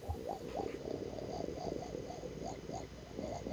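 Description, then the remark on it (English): Someone imitates a brewing Mr. Coffee coffee maker with their voice: a steady, low, throaty gurgle pulsing in quick, even bubbles for several seconds, with no words spoken. “What is this noise that you're making? Have you never heard Mr. Coffee before?”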